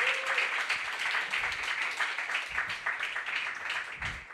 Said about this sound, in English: Congrats again on the first time. Let's clap one more time for her first time reading.